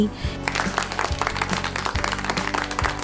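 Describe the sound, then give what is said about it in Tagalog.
A group of children clap for themselves together in a quick rhythmic burst of five claps, loud, with steady background music underneath. “Magaling mga bata, bigyan ng 5 palakpak ang sarili.”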